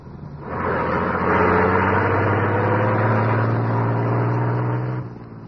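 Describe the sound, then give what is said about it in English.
At 12 o'clock, a huge truck's engine rumbles loudly for several seconds as it pulls out of an alley, a deep, steady low drone with slightly rising pitch, then cuts off abruptly. “As the huge truck rumbled out from the alley, the squad car”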